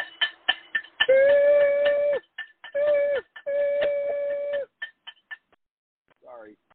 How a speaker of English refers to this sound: Oh, hold on, we have a train coming.